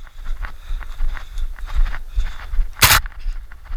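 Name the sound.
running footsteps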